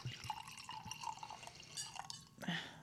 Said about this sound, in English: And it's a nice little crisp rosé. So, you know, everybody's favorite part. Give them that pour.